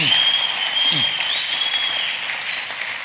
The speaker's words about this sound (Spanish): Entonces, vamos a darle un aplauso a los padres, por favor, en este día. Un aplauso fuerte.